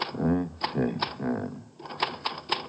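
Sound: typing on a typewriter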